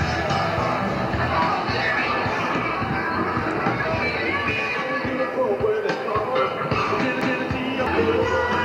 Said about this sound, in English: This is from the second show, I believe, and it's a performance of "…."